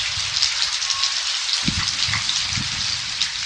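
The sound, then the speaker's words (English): Steady, dense rain hisses across a broad band during a midnight rainstorm in California, pattering on surfaces, with occasional low thumps of heavier drops and runoff beneath the continuous downpour. No voices. “We leave you this week in California during a midnight rainstorm.”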